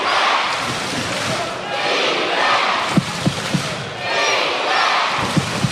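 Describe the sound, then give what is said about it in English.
A loud basketball arena crowd roars continuously, swelling and easing in waves, with a few sharp thumps punching through the din near the end, late in a game with the Sixers leading Melbourne United 95-88 and about 47 seconds left. “And hear the crowd.”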